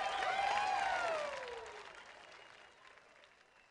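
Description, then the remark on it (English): A lively crowd at a community dancing event in the middle of a street cheers and claps loudly amid the sharp crash of breaking dishes, with rising and falling shouts, and the noise gradually fades away over a few seconds. “Okay, let's listen to them. Breaking dishes. Cheering.”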